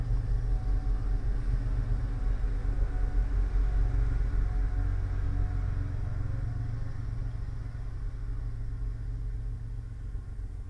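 A train rumbles past in a continuous, heavy low roar with a droning mechanical hum, steady for several seconds and easing slightly toward the end. No one speaks.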